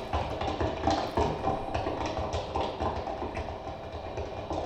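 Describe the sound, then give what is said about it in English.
Steady footsteps tap out an even walking rhythm, one step after another, over a low continuous rumble. Nobody speaks. “All you hear is just the steps.”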